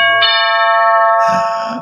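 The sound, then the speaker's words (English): A doorbell chimes in two ringing tones, the second following about a second after the first, loud with a sustained, shimmering decay and no voices. “Every time he heard the doorbell, you think it was his dad.”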